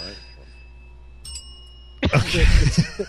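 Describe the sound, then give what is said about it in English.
A Hollywood Tower Hotel service bell rings with a bright, lingering, low and mournful metallic tone that slowly fades, is struck a second time, and then loud voices break in over the ringing. “It's a Hollywood Tower hotel bell.”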